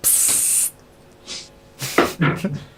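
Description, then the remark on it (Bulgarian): A short, loud burst of aerosol spray hisses for about half a second, followed by a quiet pause and then brief voices. “Спрей!”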